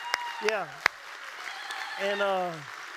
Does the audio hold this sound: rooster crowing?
no